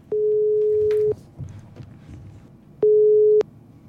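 A phone ringback tone from an outgoing phone call sounds twice, a long steady beep of about a second, a pause, then a shorter beep, clear with faint background noise between.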